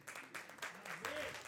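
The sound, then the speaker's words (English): An audience applauds for Jesus, a dense, steady patter of many hands clapping at an even loudness, with a voice or cheer rising briefly within the clapping near the end. “A ver, ¿usted está aplaudiendo a Donald Trump o está aplaudiendo a Jesús?”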